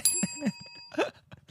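A bright bell dings twice in quick succession, its high metallic tones ringing on for about a second before fading, followed by a short burst of clattery noise.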